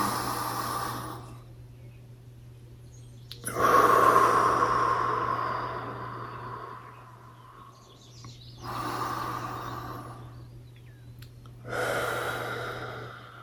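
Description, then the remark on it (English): Slow, deep cleansing breaths: long airy inhales through the nose and breathy exhales through the mouth, about four in a relaxed rhythm over a low steady hum. “So we'll inhale through the nose, exhale through the mouth on this.”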